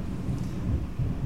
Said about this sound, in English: and there's the thunder. Damn.